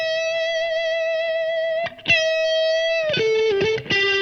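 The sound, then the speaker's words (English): An electric guitar through a small tube amp holds a long, bright, harmonically rich note, slides to a second sustained note, then plays a quick run of shorter notes with slight grit. “A nice chirp without too many artifacts and dust, you know, and noise.”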